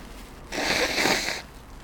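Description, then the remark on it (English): A single breathy blast of air lasting about a second, a person forcefully blowing their nose, with no talking around it. “I'm going to blow my nose.”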